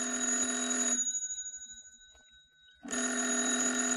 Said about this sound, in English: The phone. It's ringing.